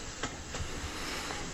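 A steady rumble from inside a moving train carriage, with faint rhythmic clacks of wheels on the track every fraction of a second and a constant airy hiss. No one speaks.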